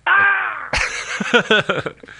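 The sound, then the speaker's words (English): A person performs a scream, their line as a shot prisoner in the film Rock of Ages: a sustained, wavering high cry gives way to a harsh burst and then a string of choppy, strained vocal yelps fading out. “Well, actually, they looped in a different scream, but yeah.”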